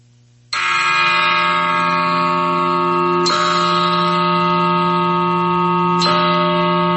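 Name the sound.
big bell being rung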